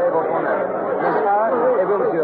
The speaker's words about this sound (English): I'm standing approximately dead center of the Place de la Bastille, right in the very heart of this massive mob of people.